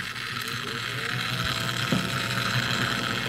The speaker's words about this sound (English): A dehydrator oven, and a record vacuum.